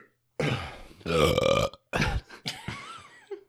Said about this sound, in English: Burp break, y'all.